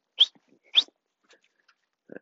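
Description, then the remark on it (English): A dog, Tater, wandering in an unfenced yard gives two sharp, high-pitched barks about half a second apart, followed by a few faint, scattered small noises and a short low rumble at the end. “Guys like to wander. Their fence isn't, their yard isn't fenced at all.”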